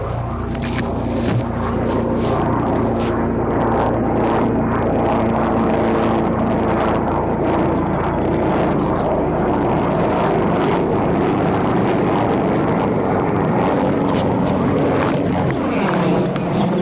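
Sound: helicopter flying overhead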